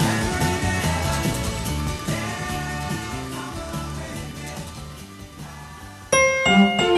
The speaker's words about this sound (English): we've got a phone call here.